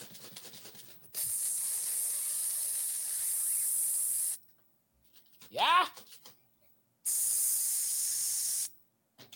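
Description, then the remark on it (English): Two long, steady hissing bursts of a spray bottle spraying water, each lasting a few seconds, loud, with brief talk before them and a short spoken word in the gap between. “I wasn't sure if it was Lysol or a bottle of water there. What is that? Oh, a bottle of water.”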